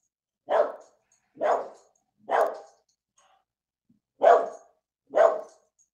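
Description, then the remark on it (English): A dog barks five times at a steady pace, three sharp barks, a short pause, then two more, fairly loud with no talking. “Bark if you want to be like that dog.”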